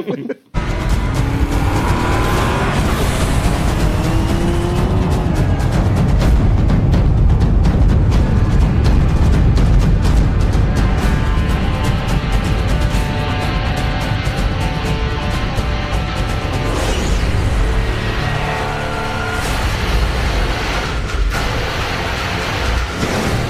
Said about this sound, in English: Here's the lads playing the drums on me car.